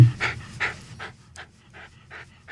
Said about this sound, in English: our special in-studio dog, Fargo, has joined us